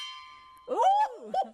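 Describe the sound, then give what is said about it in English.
A metal canteen water bottle rings like a small gong, its bright, steady tones hanging in the air and slowly fading as a voice starts speaking over the tail of the ring. “hand me the clean canteen. Oh, okay. This. Oh, because it's going to make noise?”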